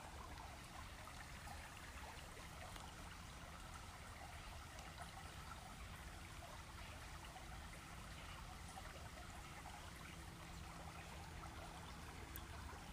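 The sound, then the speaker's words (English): A river flows steadily with a soft, continuous rushing and gentle trickling. The sound stays even and fairly quiet throughout, with no voices or other sounds. “There's leaves floating down the river that have fallen from the trees.”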